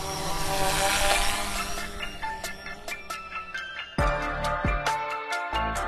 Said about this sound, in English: Now, the sound of a drone is no longer as otherworldly as it once was, thanks to the wide range of applications in which the technology finds itself.